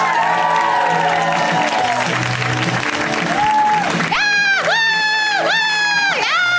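A crowd applauds loudly and steadily while cheering, with high, sustained whoops and shouts rising above the clapping, dipping and swelling in short repeated bursts toward the end.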